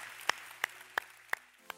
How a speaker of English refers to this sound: Anybody said a good amen? Come on, can we clap for those who prayed that with us today? Thank you.